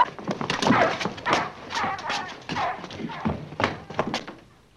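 A puppy named Corky whimpers and gives a string of short barks and yelps in uneven bursts, with a few dull thumps mixed in and no one talking.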